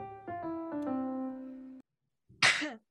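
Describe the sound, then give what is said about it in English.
A short tonal musical phrase ends, then after a brief silence comes a single loud sneeze: a quick inhale followed by a sharp, breathy burst. “Bless you.”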